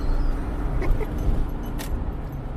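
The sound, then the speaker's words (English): A steady low rumble of a car moving along a road, heard from inside the cabin, with a faint clink or rustle partway through and no talking. “So we are on the road,”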